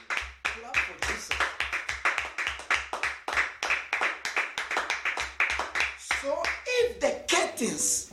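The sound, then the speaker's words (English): A crowd claps its hands in a steady, loud burst of sharp claps lasting several seconds, with raised voices calling out over the clapping as it winds down, clapping for Jesus during a talk on Leviticus. “Clap for Jesus.”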